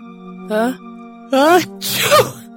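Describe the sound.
A voice imitates a sneeze: two rising, voiced gasps build up, then a loud, breathy burst of air ends it.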